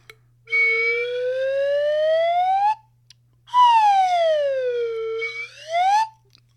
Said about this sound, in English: Slide whistles. They're pretty funny. Weird little dorky funny sound.